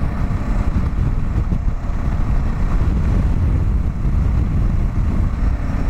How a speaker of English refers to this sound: These wind gusts are insane. Oh, God. Okay. Let's see how all this goes when I cross the Hood Canal Bridge. Yeah, that's right. That's fucking right. I'm driving a motorcycle across the Hood Canal Bridge. And it's very windy.